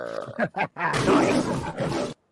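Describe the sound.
A few short guttural growls lead into a loud, raspy tiger roar that swells for about a second and cuts off abruptly, on its own.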